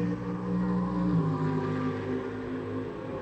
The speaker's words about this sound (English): Do love the noise of the cars as they go past us here generally, and then lift off and down through the gearbox into turn five. Really hear the popping and banging. Excellent stuff.